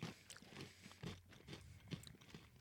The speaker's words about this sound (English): I like the crunch. I mean, there is a definite crunch factor there. Yeah, you can hear it. There is a lot of crunch.